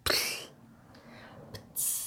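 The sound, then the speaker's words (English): A voice imitates a teardrop exploding: a sharp, breathy hissing burst, a quiet pause with a faint click, then a second loud spray of hiss to finish. “So what would the sound of a teardrop exploding be?”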